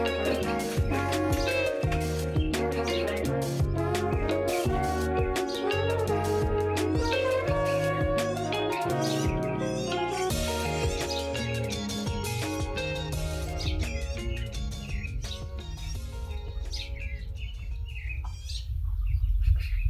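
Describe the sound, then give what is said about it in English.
Birds chirp and tweet steadily in a park, bright calls overlapping throughout, over a constant low rumble of outdoor background noise. “I was really excited to head to my local park and try to see what birds I could find.”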